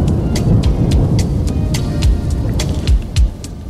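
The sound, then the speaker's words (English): Deep, rolling thunder rumbles loudly and continuously, with a steady pattern of crisp high ticks repeating above it throughout. No one speaks. “I'm sure you guys heard that lightning and thunder and surround sound.”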